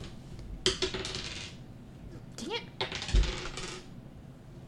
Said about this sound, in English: Not that I can even see what you're rolling. I rolled 3 ones in a row.